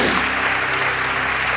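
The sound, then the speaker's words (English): An audience claps together as a hand clap of praise to the Lord: steady, dense applause, a loud continuous wash of many hands filling the whole 1.6 seconds with no break. “And can you give the Lord another hand clap of praise?”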